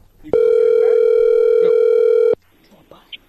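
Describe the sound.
A loud, steady electronic tone of a disconnected phone call holds one pitch for about two seconds, then cuts off abruptly, followed by faint background voices.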